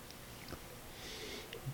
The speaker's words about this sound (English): I'm sniffing weird.